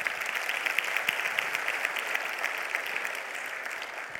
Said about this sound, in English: Come on, let's give him a round of applause. Great job.